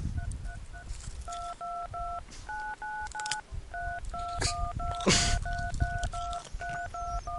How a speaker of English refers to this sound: We thought we'd give you some on-hold music while you wait.